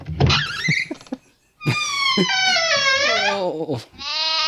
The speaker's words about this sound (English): It's a lamb.